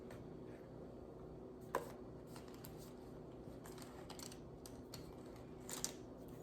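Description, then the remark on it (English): Quiet rummaging through an Audio Technica headphone bag holding pencils, pens and markers, with small plastic items clicking and rattling against each other in irregular bursts and a couple of sharper knocks, no one speaking. “I'm gonna grab it from my bag, my Audio Technica bag.”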